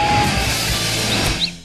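A brief bird-tweet sound effect introducing a 'Twitter machine' segment: a couple of quick, high chirps near the end, set over a steady wash of hissy, dense background noise.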